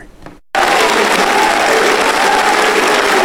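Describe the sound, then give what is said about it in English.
After a brief moment of quiet, a packed crowd at Calvary Church in San Jose greets Republican California governor candidate Larry Elder, erupting into loud, sustained applause and cheering, a dense wall of clapping and shouts that continues steadily without pause. “Republican candidate for governor of California, Larry Elder, was greeted by cheers from a packed crowd at Calvary Church in San Jose Thursday afternoon.”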